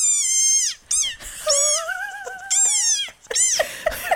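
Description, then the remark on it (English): A small frog gives a run of shrill, squeaky calls, about four loud bursts with sliding, wavering pitch, some drawn out into a thin whine, and no voices over them. “they make their ribbit isn't quite a ribbit. It's like a little squeak.”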